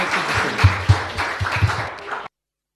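An audience breaks into a brief round of applause, a dense wash of many hands clapping at steady loudness for about two seconds before it cuts off abruptly into silence.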